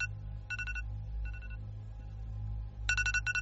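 An alarm set the night before rings in short bursts of rapid electronic beeps, growing louder toward the end, over a steady low hum with no one talking.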